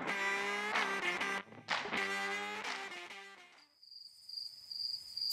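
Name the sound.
chirping crickets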